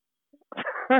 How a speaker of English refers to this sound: Yeah, I can't make you laugh because you're still coughing, so. I know, sorry.